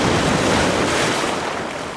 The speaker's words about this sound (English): It sounds wild here today, but this is actually pretty calm. The waves are only 2 to 3 feet.